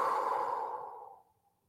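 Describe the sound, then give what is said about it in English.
A single long, breathy exhale through the mouth during a guided breathing exercise, after breathing in through the nose; fairly soft, starting strong and gradually fading out over about a second and a half, with no talking. “Breathing in through your nose. Breathing out through your mouth.”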